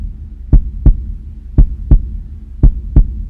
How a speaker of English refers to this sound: I could hear my heart thudding in my chest with each step I took.